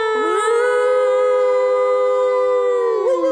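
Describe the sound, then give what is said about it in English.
A person lets out a long, loud, sustained wolf-like howl, a steady pitched tone held for about three seconds with a rising start and a falling break at the end. “Okay, I don't know why I'm howling.”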